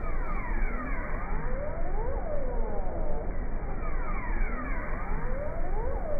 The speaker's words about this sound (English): Now, okay. And the last one is the raw seal whistles.